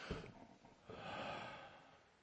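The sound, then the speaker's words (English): A big, deep breath drawn in through the nose, a single long rushing inhale that swells in the middle and tapers off, fairly loud with no talking. “But the first thing I want us to do, and you do this with me, just take a big breath.”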